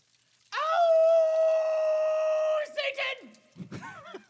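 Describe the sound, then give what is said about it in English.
A loud, long, unholy howl held steady for about two seconds, voiced by a person imitating it, then trailing into a few short, strange vocal sounds. “Anyway, I was walking through the woods, and I heard an unholy howl.”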